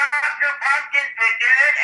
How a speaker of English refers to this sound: That's Chris's ringtone, by the way.